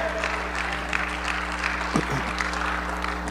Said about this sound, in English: I'm going to look around and say, well, you should be clapping your hands and you should be clapping.